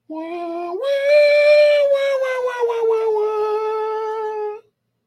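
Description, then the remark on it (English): The Star Trek theme, carried by a lone wordless, voice-like melody: a held note leaps upward to a long, sustained higher tone with slight wavering, steady and fairly loud for about four seconds. “I don't think that's the Sea Trek music. That was Star Trek music.”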